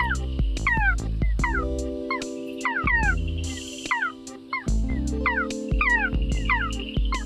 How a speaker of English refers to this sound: She's the Meowing Night Frog. This frog gets its name from its distinctive call, which sounds, yes, you guessed it, like a cat's meow.